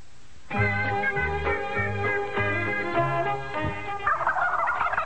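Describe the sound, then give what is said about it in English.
A live turkey gobbles loudly, a rapid, rattling series of throaty pulses lasting several seconds before trailing into a rougher, breathier squawk. No one speaks. “I didn't know Bill would send a live turkey.”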